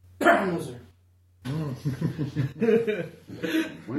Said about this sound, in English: Sorry, I have a cough, you guys.